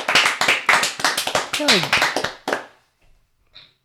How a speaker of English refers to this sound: Yeah, I mean, that was the most pointless applause.